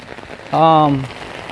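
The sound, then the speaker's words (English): Steady rain hisses throughout at a moderate level while someone walks to a store in the rain, briefly overlaid midway by a short, voiced, slightly falling tone lasting about half a second. “I might not, just because it's raining a lot and I don't want my stuff to get wet.”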